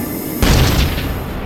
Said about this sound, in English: An explosion rocked the plane. It took all of my strength to keep her flying steady.